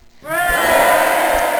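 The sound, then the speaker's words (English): After a brief moment of quiet, a loud burst of cheering erupts, with many voices yelling together in a sustained roar that carries on to the end. “Yeah, I was guessing you were gonna cheer.”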